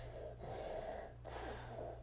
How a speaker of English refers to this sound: Number 10, the sound of Darth Vader's breathing.